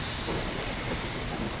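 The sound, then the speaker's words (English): Steady rain falls outside in Toronto in the morning, a dense, even hiss of drops with a faint low rumble beneath, continuous and moderately loud with no voices. “It's raining in Toronto this morning.”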